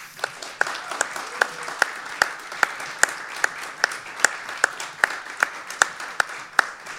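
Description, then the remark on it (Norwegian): An audience applauds steadily for several seconds as political commentator Harald Stanghelle of Aftenposten is brought up on stage, a dense wash of clapping punctuated by sharp, evenly spaced louder claps that keep a quick regular rhythm. No one speaks. “Ja, men skikkelig applaus.”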